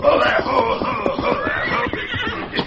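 A horse whinnies loudly and steadily over a rapid, continuous clatter of approaching hoofbeats, moving at pace.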